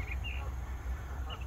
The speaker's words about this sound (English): But yeah, it's a lovely morning. The old geese have woken me up, which is absolutely lovely.